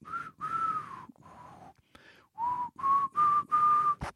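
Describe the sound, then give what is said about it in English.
A person whistles a TV theme tune, a series of held, wavering notes with short breaths between them, somewhat breathy and unsteady, ending with a soft thump. “Sorry, I was really struggled with that one. Quite a struggle with that one, whistling that one.”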